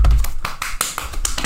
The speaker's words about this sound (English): I slapped my hand really loudly just then. Red. Look how red it is, you guys.